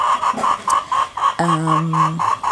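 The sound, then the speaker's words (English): A chicken clucks right next to the speaker, in a garden with avocado trees and sukuma, in a steady run of short, rhythmic pulses, with one longer drawn-out call in the middle before the quick clucking resumes. “You can hear a chicken right next to me.”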